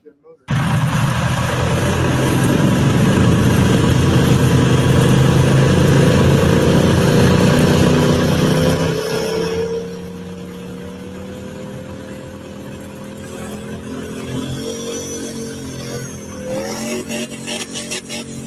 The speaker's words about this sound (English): That's a good rip. That's a good sounding truck